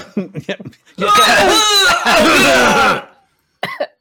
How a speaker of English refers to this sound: You're making me cough.